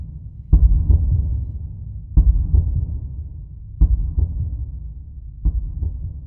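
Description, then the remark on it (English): The slow, heavy heartbeat of a dying man, felt by a hand placed on him, thuds in low, muffled double beats, four lub-dub pairs spaced well apart over a dull rumbling drone, the last beat slightly weaker as it fades away. “With his hand placed on his dear friend, he can slowly feel the heartbeat fade into the abyss.”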